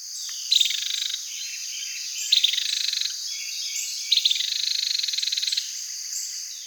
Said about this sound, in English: Carolina wrens also give a rattling alarm call.